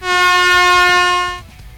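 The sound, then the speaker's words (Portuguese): A single loud, steady horn buzzer blares for about a second and a half, bright and buzzy, then cuts off abruptly, leaving faint background noise. “Acho que valeu essa semi-buzina, né?”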